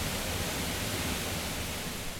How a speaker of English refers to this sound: All right, so this feels like, you know, that one of those really magic spots in Oregon where you're just behind this gigantic curtain of water in kind of a little cave.